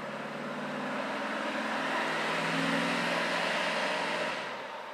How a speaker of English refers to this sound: And here comes the morning traffic.